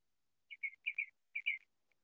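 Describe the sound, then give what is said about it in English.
A small bird chirps outdoors in a quick series of about six bright, high notes grouped in pairs, with brief pauses between, fairly clear against an otherwise quiet background. “I can hear a plane and a bird and a truck across the street that's apparently going to start some construction.”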